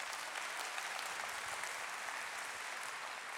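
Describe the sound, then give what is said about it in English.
An audience breaks into steady, sustained applause for a church in Woodruff nearing its one-year anniversary, a dense wash of many hands clapping at an even loudness with no voices standing out, continuing for a few seconds. “And when you can clap, you ought to clap for that.”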